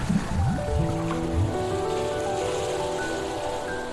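Steady, icy cold ocean water sloshing and lapping, a continuous wet wash that stays even throughout, with faint sustained tones humming underneath and no voices.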